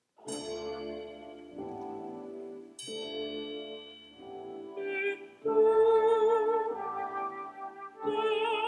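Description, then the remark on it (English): A bell is struck twice, a few seconds apart, each ring decaying slowly over a low, intoning voice and sustained instrumental tones that swell louder toward the end; the maid Suzuki rings it during a folk-song prayer opening Act Two of a Puccini opera. “Act Two starts with a prayer intoned by Butterfly's maid, Suzuki, who is ringing a bell.”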